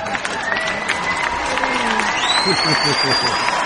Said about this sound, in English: Clap, applause.